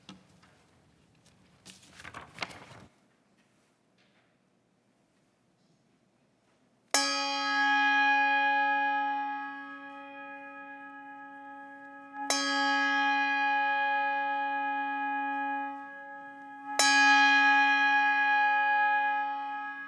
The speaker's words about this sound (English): Now John Spinks will ring the Trinity chime for us.